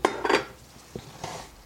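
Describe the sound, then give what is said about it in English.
A utensil stirs pasta and cheese in a pot, mixing in a sprinkle of kosher salt, giving a few irregular scrapes and metallic clinks, two quick ones at the start and softer knocks later, with no talking. “I know that sounds crazy because there's so much salt in that cheese, but I just added a sprinkle of kosher salt over the top, which I'm now stirring in, and I'm going to use some more of this pasta water.”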